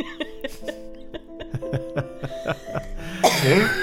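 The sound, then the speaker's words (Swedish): A rapid series of short, rhythmic coughs, fairly loud, repeating almost like a beat over steady sustained musical tones, ending in a drawn-out vocal sound. “Ja, och med de orden så önskar vi er en hostig, fantastisk, förträffligt god jul.”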